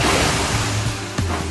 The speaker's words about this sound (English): Carly looked out across the stormy sea.